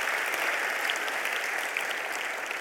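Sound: audience round of applause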